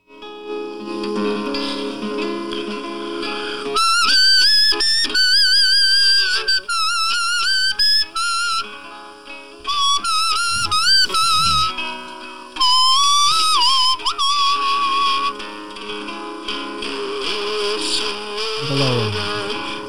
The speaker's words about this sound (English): he started whistling a lot on stage. Mm-hmm. And I thought maybe he was having problems with his voice, and it was just a lot easier to whistle part of each song.